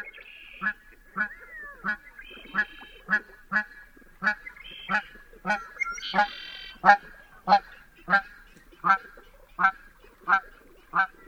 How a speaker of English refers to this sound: A lone Canada goose flies overhead, followed by a pair headed in the opposite direction.